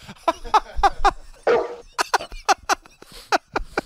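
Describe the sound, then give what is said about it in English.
A voice imitates a dog, letting out a rapid string of about a dozen short, yappy barks with a brief breathy rasp midway, loud with no talking. “Yeah, you're like one of them dogs that can just sniff the person and do a special bark that tells the owner cancer.”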